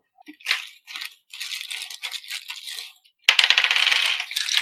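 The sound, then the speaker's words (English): Dice rolled on a table: irregular clicks and clatters with short pauses, then a louder, dense rattling burst at the end. No voices. “So, all right, let me get my dice.”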